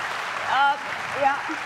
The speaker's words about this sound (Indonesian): Tentu buat Indonesia dan tentu buat rakyat. Kita kasih tepuk tangan untuk itu.